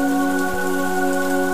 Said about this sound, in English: Enjoy the calmness that comes with the summer rain and the serenity it brings to your being.